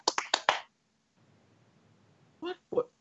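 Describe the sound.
One person claps hands four times in a quick, even, sharp burst. A short quiet stretch follows, then two brief voiced sounds near the end.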